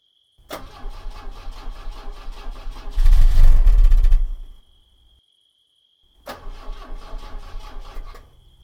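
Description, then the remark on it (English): A car engine cranks with a steady mechanical chug, briefly roars louder as if about to catch, then dies into silence. It cranks again for a couple of seconds and still fails to start. “What's wrong with it? I don't know. That doesn't make sense. Has it run out of gas?”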